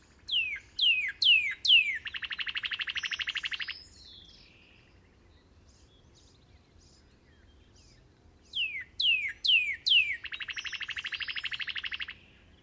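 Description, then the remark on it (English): A northern cardinal, the first songbird to sing at dawn, sings two clear, loud phrases, each opening with four downslurred whistles and ending in a rapid trill, separated by a few seconds of quiet background. “The first songbird to sound off at dawn is none other than a northern cardinal.”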